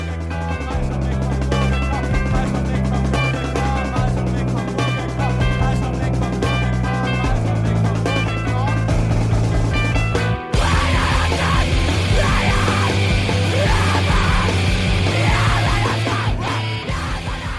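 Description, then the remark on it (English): A loud, dense screamo riff of distorted guitars with harsh screamed vocals, briefly cutting out about two-thirds through before crashing back in even heavier. “and then the bit after that, the bit where that explodes, for my money, is the best riff and scream combo in all the songs.”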